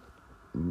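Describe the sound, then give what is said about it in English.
A single loud, low-pitched burp bursts in abruptly after a stretch of near silence, with a rough, buzzy vocal tone that holds to the end. “Big burp.”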